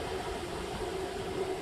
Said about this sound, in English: Yeah, sorry, it's my electric kettle Wilfa.